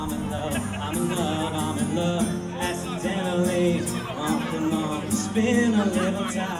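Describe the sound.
A busy crowd hubbub at the outdoor MaccPride festival, people of all ages by the main stage, with many overlapping voices chattering and calling out at a steady, fairly loud level throughout, with occasional brighter shouts rising above the din.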